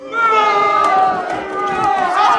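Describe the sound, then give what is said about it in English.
A crowd-booing sound effect played from a keyboard: a loud, sustained, steady chorus of low voices, holding for a couple of seconds and swelling slightly at the end, with no clear talking. “How dare you, keyboard? Don't you boo”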